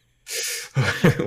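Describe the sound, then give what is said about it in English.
Heavy breathing: a long, loud rush of breath followed by a couple of heavier, voiced gasping breaths in quick succession. “Why am I breathing harder?”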